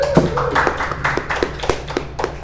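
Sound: audience round of applause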